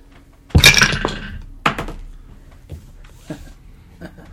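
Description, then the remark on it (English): Metal forks and knives clink and clatter all around in a cave, echoing, starting with a loud, bright burst of jangling metal, then a few scattered, fainter clinks that ring out briefly. “metal, like, forks and knives, just clink, clink, clink, clink, clink, clink, clink. all around you, and that echoes throughout the cave”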